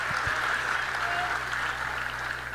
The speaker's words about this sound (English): But clap it up for that.